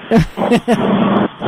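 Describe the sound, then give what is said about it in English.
Steady street traffic noise at a bus stop rumbles and hisses throughout, with short bursts of voice breaking in over it, heard through a narrow, phone-like line. “Are you standing in the middle of the street?”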